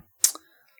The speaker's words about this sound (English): I hope the mic is picking up the typing sounds. Yeah, I hope it is too.